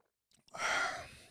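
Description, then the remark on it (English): A sip of Irish coffee: a couple of faint lip clicks, then a breathy, airy slurp and exhale lasting about a second, with no talking. “And so I'm, you know, I've Irished up my bung bung bean. I've Irished it up, dude. A bung bung bean.”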